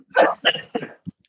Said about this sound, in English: I'm just going to cough here. Hang on for a second, buddy.